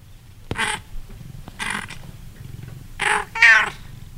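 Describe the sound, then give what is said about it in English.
A cat named Donkey, sitting in a bed by a desk, meows four times for attention, short insistent calls spaced about a second apart, with the last two louder and coming nearly back to back. No one speaks. “Little outburst from Donkey, who sits in a bed by my desk the whole day, just kind of meowing for me to pay attention to him.”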